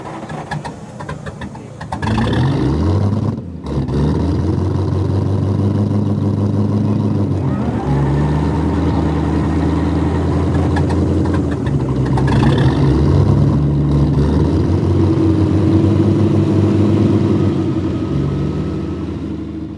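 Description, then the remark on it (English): Modern motorcycle engines powering a finished aircraft run loud, a steady buzzing drone that swells and dips slightly in pitch as the revs shift, continuing throughout with no pauses. “Watching the videos of the finished aircraft, though, one does wonder how the beautiful racket of the Bugatti engines would have sounded as compared to the muted scream of their thoroughly modern motorcycle cousins.”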